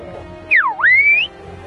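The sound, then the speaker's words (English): A single loud whistled phrase in an islanders' traditional whistled language, whistling a person's name: a sharp tone sweeping downward, then gliding back up and holding high before stopping, with faint background noise and no talking. “Some even speak the old whistled language.”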